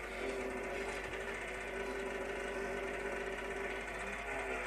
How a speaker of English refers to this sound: This is the fella starting a tractor. It's like the old Irish tractors. It starts on a petrol engine first and then switches over to a diesel engine.